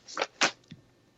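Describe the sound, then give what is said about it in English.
Two quick, crisp bursts of paper rustling, then a softer shuffle, like sheets being flipped and handled as someone searches for another piece of paper. No one speaks. “And I'm looking for another piece of paper.”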